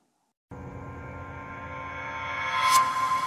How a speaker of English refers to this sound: It's like a tunnel. Mm-hmm. You know what I mean? Mm-hmm. Yeah. That's an echo. It's definitely an echo.